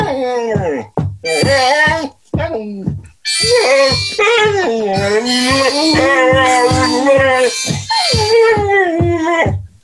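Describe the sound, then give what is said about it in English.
A dog howls along with a harmonica during a radio broadcast, its long wavering wails rising and falling over reedy sustained notes, loud, in several bursts. “he likes to sing to the harmonica.”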